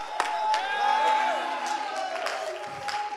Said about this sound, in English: It's time to lift up our voice with a shout. It's time to clap. It's time to sing. It's time to dance. It's time to pray. It's time to get right with God.